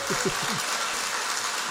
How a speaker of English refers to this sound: Round of applause.